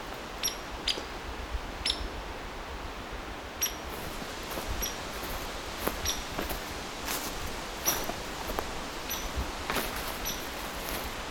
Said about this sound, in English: So the hairy woodpecker got that piercing call. That other stuff you're hearing, though, is it's kind of agitated behavior. Probably warning others that potential predator nearby.